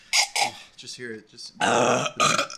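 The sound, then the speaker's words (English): A loud, drawn-out burp with a rough, gurgling low rumble, preceded by a couple of short breathy bursts and vocal noises, then a final brief belch-like sound. “Hey, that's a burp.”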